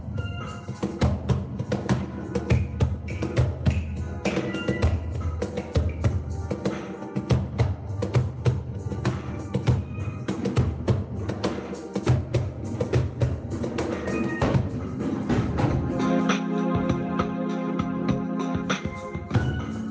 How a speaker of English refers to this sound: We, ASPAM IIS, are practicing for tomorrow, where we're celebrating the 47th UAE National Day. We are playing an Arabic beat. We'll play it for you right now.